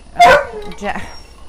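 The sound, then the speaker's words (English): A dog gives one sharp, loud bark, then a softer, shorter bark follows right after. “we may need to send to the dog for a second. Handle him.”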